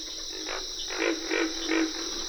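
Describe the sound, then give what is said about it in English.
Pig frogs grunt in a loose series of deep, rhythmic croaks over a steady, high-pitched drone of crickets, with carpenter frogs joining the outdoor chorus at moderate volume and no voices, on a wet grassy prairie in the Okefenokee National Wildlife Refuge in Georgia. “Pig frogs are the featured crooners at a wet grassy prairie in the Okefenokee National Wildlife Refuge in Georgia. Backup singers include cricket and carpenter frogs.”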